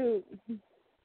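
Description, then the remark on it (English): A pet bird mimics a cat's meow: one drawn-out, falling meow followed by two short, softer mews, fairly quiet, with no one talking. “Now you're all full of kitties, aren't you? Yeah, now you want to perform.”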